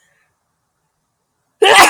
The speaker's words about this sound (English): I will also sneeze. Ragweed pollen is like extremely high from, it's been extremely high for weeks.